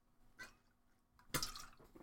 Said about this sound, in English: Got to have a little bit of water here.